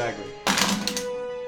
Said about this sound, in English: You have to roll a 1d8 plus 4, and then you have a 1d6 that you also have to roll